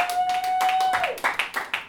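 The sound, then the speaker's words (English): Audience clapping in a steady, rapid rhythm of sharp bursts, with a high whistle-like tone held over the first half before it slides downward and fades. “I recently discovered about myself that I will not clap for anybody more than 10 times in a row.”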